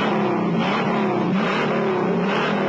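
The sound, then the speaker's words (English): The 428 Cobra Jet Ram Air induction V8 engine of a Mustang Mach 1 revs up, a loud, throaty roar that holds steady with slight rises in pitch throughout, with no voices present. “An 8 so hot performing, it comes with its own poke-through air cleaner that jumps when the engine grinds.”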